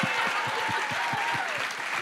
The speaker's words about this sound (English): Well said. Well said. Let's everyone applaud.